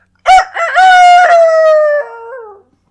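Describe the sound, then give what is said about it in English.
A man's voice imitates a rooster crowing: one loud cock-a-doodle-doo, stuttering at the start, then a long sustained call that drops in pitch and trails off at the end. “Couldn't fool that rooster, though, could you?”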